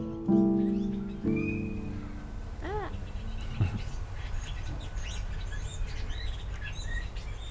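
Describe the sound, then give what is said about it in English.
Broody birds call noisily outdoors, outside a recording studio in Reykjavik, Iceland: a loud, harsh honking cry opens, followed by rising chirps and a steady scatter of smaller tweets over a constant background hum. “the birds were really broody. Yeah, they were going nuts.”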